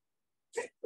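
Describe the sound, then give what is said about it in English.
A sudden sneeze, a short sharp two-part burst with a breathy, noisy snap, after a moment of silence and with no talking around it. “Bless you.”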